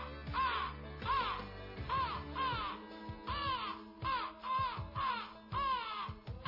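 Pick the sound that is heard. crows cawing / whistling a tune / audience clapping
crows cawing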